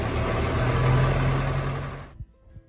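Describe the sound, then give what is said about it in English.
A Workmaster 75 tractor engine idles while warming up with a steady, low diesel rumble, then cuts off abruptly after about two seconds, leaving a couple of faint knocks in near silence. “Workmaster 75 warming up.”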